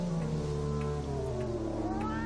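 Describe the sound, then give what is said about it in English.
A cat lets out a long, drawn-out meow that rises in pitch toward the end, fairly loud, over a low, steady background drone. “Why am I talking to a cat?”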